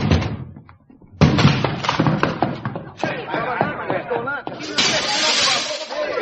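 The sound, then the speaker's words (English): A flat's door is smashed open with a sudden loud crash, followed by window glass being broken to let air into the gas-filled room, shattering and scattering in a burst of sharp, clattering fragments lasting several seconds. “The window I broke let in some air.”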